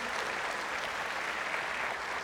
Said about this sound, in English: I want to welcome our newest congregational guest, and I would not say guest, let's change it, our new congregational attendees this morning, our K-4 and K-5 children. Can we give them a clap of praise this morning?